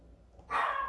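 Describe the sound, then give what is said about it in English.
After a brief quiet moment, a dog named Leilani suddenly lets out a loud, sustained bark-growl that carries through to the end, with no one talking. “Oh, I think she's growling at Sterling.”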